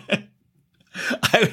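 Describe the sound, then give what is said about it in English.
A cough: one short burst, a pause of near silence, then a rougher run of two or three harsh coughs in quick succession, fairly loud. “I still just cough, kick it over.”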